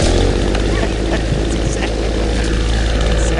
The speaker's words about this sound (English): But what if they just get out there and he starts bringing out the leaf blower or something like that?